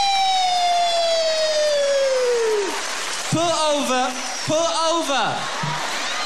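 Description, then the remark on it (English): A man's voice imitates a police siren: one long, drawn-out falling wail, then two shorter rising-and-falling whoops, loud and sung without any other talk. “And the cars would come rushing across town, be woo, woo, woo, woo, woo. And it won't be no siren, it'd be a real fag sitting on the roof going, woo, woo, woo, woo, woo, woo, woo, woo.”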